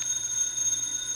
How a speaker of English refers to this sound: Huh? What was that? What was that? The phone. That's a phone. Who'd be calling me in the middle of the night?